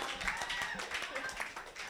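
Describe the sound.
An audience claps in a dense, steady burst of many overlapping hands, with a voice speaking over the applause throughout.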